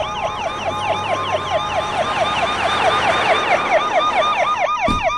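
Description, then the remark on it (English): Several police patrol car sirens wail together in rapid, overlapping yelps, loud, with a steady rumble of traffic underneath and no voices, as the patrol cars arrive at La Casa Rosa, the house of Miami Mayor Esteban Calderon. “And here come the patrol cars, either to escort him to the stage where he'll be giving his victory speech, or to arrest him.”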